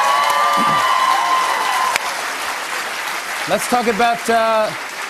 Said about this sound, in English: Can we do applause and I'll just go from the applause and go into it again?